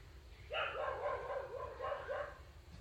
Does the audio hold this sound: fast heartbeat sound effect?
no